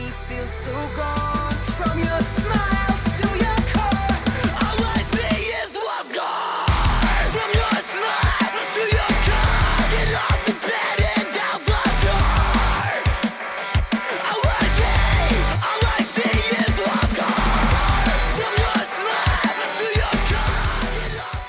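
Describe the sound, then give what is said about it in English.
Harsh screamed vocals ride over a loud, dense heavy rock track: sustained distorted chords at first, then pounding drums and guitars crash in after a few seconds and drive steadily to the end. “I'm going to go and play the scream parts at the end.”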